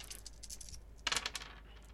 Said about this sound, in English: Go ahead and roll me some discipline dice.